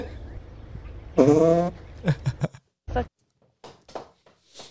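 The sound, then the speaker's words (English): A car's gas tank lets out a sudden loud, fart-like blare with a wavering pitch over a low rumbling hum, followed by several shorter sputtering bursts and pops. “Fucking gas tanks farting? What the fuck? He's on this. Is it gonna explode? Why is it farting at me?”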